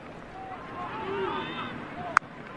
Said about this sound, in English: Critchlow claps the hands, which you can hear.